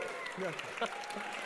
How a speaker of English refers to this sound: Yeah, go ahead and clap.